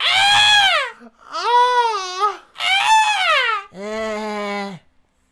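A person screams four times in a row, each loud, strained wail lasting about a second with a wavering pitch, the last one lower and steadier. No talking accompanies the screams.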